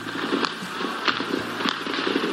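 Gunfire in the streets of central Beijing in the early hours of June 4th as People's Liberation Army troops open fire: three sharp, cracking shots spaced at fairly even intervals, ringing out over a steady, noisy background rumble.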